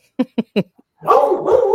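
A dog named Murph gives three quick, sharp barks in a steady rhythm, then after a brief pause lets out a longer, wavering, drawn-out yowl that rises and falls in pitch.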